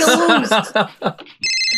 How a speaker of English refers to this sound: Please cue the cell phone music.